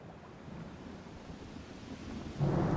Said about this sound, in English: Then the water started to splash and splash and pick up in strength. They could see that a storm was brewing above the waves.